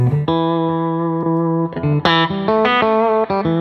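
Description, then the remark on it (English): A compressed Telecaster electric guitar plays a long, evenly sustained low note, then a quicker sequence of brighter picked notes, all at a steady, squeezed loudness with no talking. “Well, let's hear the telly with the compressor and give us some.”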